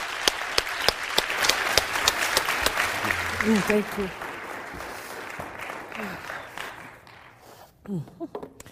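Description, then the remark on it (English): A crowd applauds for a woman during a service, dense, steady clapping that gradually thins out and fades, while a voice speaks briefly over it near the end. “I think to encourage her heart, could we give her a nice round of applause?”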